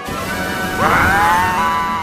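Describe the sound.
A voice imitates a crazed, rogue elephant's trumpet: one loud, brassy, strained blare that swoops upward and holds for over a second before tapering off.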